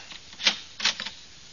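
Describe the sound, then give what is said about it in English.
A door swings shut and locks, latching with a couple of short, sharp clicks, followed by a faint rattle, fairly quiet and with no voices. “Uh-oh. The door done closed. It's locked.”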